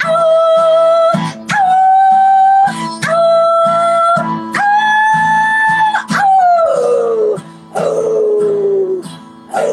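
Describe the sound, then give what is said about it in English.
A person imitates a dog howling, with about five loud, drawn-out howls in a row, the last two sliding downward in pitch. No talking. “Your deep dog voice as well.”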